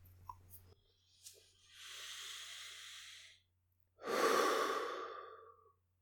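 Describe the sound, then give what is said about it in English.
Two slow, deliberate breaths during a guided relaxation session: a long, airy inhale followed after a pause by a fuller, louder exhale, with faint clicks at the start and no talking. “Just acknowledging if there's a blockage or a point of tension, or just anything there and just accepting it, acknowledging it, continuing our slow, calm breathing.”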